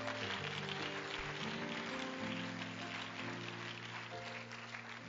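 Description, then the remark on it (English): A church audience claps their hands to the Lord steadily throughout, a dense, continuous patter of many hands over sustained organ or keyboard chords that shift pitch partway through. No one speaks. “Clap your hands again to the Lord.”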